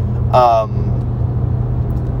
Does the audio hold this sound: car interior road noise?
yes